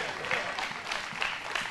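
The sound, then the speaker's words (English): The TWBC audience applauds to celebrate its kids: a dense, steady wash of many hands clapping together, fairly soft and even, with a few sharper bursts rising out of the crackle. “Y'all give our kids a big hand clap of praise.”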